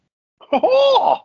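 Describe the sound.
A person makes a short, wavering vocal squawk imitating a seagull call, rising then sliding down over about a second, loud with no other talk.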